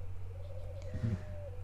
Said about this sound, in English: Got horses in the background. Got birds overhead. The sun is shining. I'm surrounded by this beautiful ridge of pine trees.